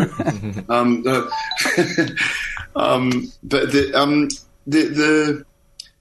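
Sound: alarm going off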